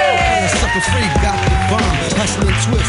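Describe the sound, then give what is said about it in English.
A comedy show audience claps and cheers loudly and steadily throughout, with dense overlapping hand claps and rising whoops and shouts of voices on top. “Everybody clap wildly.”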